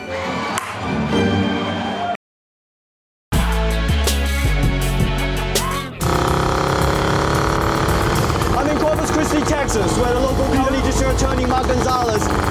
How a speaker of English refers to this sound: Can anyone even understand me over the sound of this massive chopper?